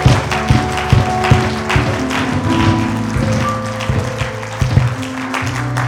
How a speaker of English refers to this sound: Why don't you clap for Jesus? Clap for Jesus.